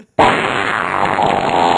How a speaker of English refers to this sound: It was on the fart board I tried to pull up online.